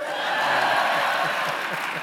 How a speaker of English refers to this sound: That may not have been the answer you're looking for, but I just like hearing them applaud.